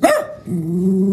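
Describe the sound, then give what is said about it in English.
A dog gives a single sharp bark, followed by a sustained low growl that holds steady to the end. Fairly loud, with no talking. “This dog.”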